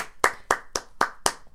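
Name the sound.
hand clapping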